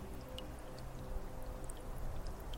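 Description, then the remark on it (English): Soft, continuous trickling water with a low rumble underneath, dotted with scattered small drips and plinks. Quiet and steady, with no voices. “The water.”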